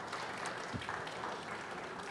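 A crowd claps steadily, a dense, even wash of many hands applauding at moderate loudness for a couple of seconds without any voices rising above it.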